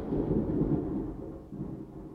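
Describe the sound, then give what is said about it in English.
Loud, crackling thunder rumbles continuously, a dense low roar that swells and slightly fades, with a brief dip then resurgence near the end; no voices are heard. “So the thunder speaking to you is like a crackling.”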